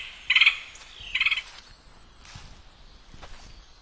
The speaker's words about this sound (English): There's that woodpecker again.